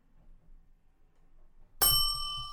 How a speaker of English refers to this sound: What was that? I wanted to ding the bell. Oh, okay. You can ring the bell if the Brewers hit a home run.